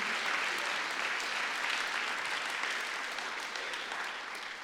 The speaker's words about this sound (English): If you are recognizing that, let me hear from you by the clapping of the hands and the lifting of the voice. Amen. Amen. Amen.